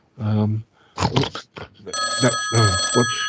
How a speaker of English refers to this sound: Oh, the phone's going now.